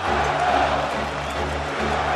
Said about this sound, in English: You hear the crowd chanting Marco Scudero. That has to be such a marvelous feeling for Marco Scudero.